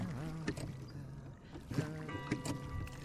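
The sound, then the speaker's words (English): Oars pull a boat through water in a steady rhythm, each stroke bringing a swishing splash, with a low creaking tone running under the strokes. “Doesn't hear her silent splash above the rhythm of his rowing.”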